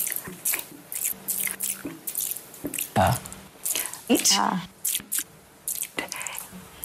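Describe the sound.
Wet, clicky mouth noises made by a woman during a 3-minute interview—smacks, lip pops and saliva clicks—crackle repeatedly in close, dry succession, mixed with soft breathy speech fragments and brief tonal hums.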